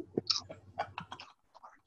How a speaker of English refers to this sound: Because you're eating. Yeah. I'm currently munching through my crisps.